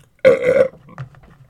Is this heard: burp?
yes